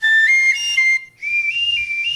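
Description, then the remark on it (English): A shrill Wiener whistle, a toy prize from a KCAA and KQLA hot dog lunch event, blown in two loud, steady bursts, the first wavering slightly in pitch, the second rising in small steps, with a brief gap between them. “Get your Wiener whistle.”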